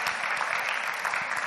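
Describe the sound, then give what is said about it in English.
A church audience claps together in steady, dense applause as a clap offering to God for a first-time visitor, a loud, continuous wash of many hands with no voices standing out. “Let's give that sister a mighty clap offering for God to bring that sister into our midst.”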